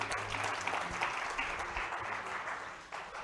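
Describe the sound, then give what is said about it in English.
An audience claps hands in praise to God, a dense, steady wash of many overlapping claps held at an even loudness for the whole stretch, with no voices standing out. “Give God a hand clap of praise in the building.”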